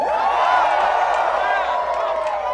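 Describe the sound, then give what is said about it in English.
A crowd cheers and whoops continuously, many voices blending into a loud, steady roar of shouting that fills the whole short stretch without any pause. “Cheer if I fucked you.”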